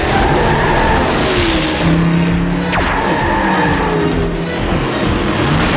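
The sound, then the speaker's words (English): Small Hot Wheels RC cars, steered by a kid with a video game controller, race continuously with high, buzzing motor whines and sharp tire squeals as they skid through turns. The sound is loud and busy throughout, with no voices. “There's a kid with a video game controller, but he's just controlling a little RC car.”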